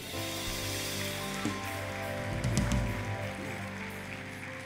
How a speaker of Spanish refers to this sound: Un aplauso.